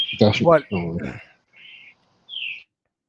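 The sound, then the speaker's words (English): A person talks briefly, then two short, high chirps follow in a quiet pause, like a small bird calling somewhere in the background at moderate volume. “You got a real bird sensory word going on there”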